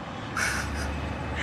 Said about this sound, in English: Okay, hang on. There's another truck.